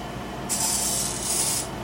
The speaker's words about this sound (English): Alright, we're gonna spray a little bit more Raid.